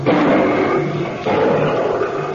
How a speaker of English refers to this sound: Then, as they trudged through the thick undergrowth... Good grief! Look, a lion!